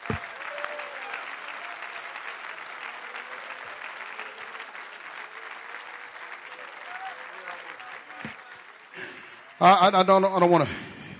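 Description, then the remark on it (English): A church audience claps their hands to the Lord in a steady, sustained wash of applause for several seconds before a man's voice breaks in loudly at the end. “Clap your hands to the Lord and love Him.”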